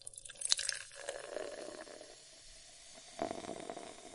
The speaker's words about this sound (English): And I also have a can of Coke. Righto. Now, I'm going to pour this Coke into a glass.